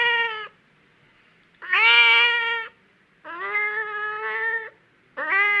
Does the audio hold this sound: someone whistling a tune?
no